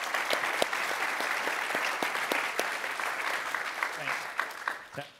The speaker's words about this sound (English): Can we have a huge round of applause for the audio team that's just been running the stage?